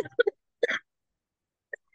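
Several short, throaty coughs come in uneven bursts: a quick pair, a longer rough hack, then a pause before a final sharp cough at the end.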